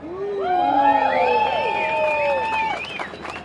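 A large rally crowd of about 20,000 marching workers in Melbourne, Australia, protesting attacks on workers' rights, many voices shouting and cheering at once in overlapping, rising calls, loud and sustained for the whole stretch with no single speaker standing out.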